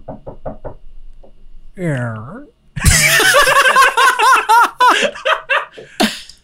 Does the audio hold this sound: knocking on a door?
yes